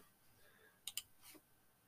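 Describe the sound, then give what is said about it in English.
Two quick, crisp computer mouse clicks close together as someone clicks back, followed moments later by a softer third click, all faint amid otherwise quiet surroundings with no talking. “as I was clicking back, one of the covers was like $160”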